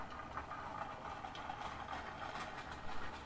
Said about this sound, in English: Is someone riding a scooter or something outside? I can really hear that. I'm waiting for it to stop and say... I was expecting it to go past in stereo, but it won't work.